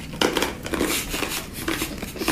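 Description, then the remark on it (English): Someone crunches a crispy sweet: a quick run of sharp, crackly bites and brittle snaps in an irregular rhythm, moderately loud, with no talking. “I'm just going to crunch it quickly before we get on to the next one.”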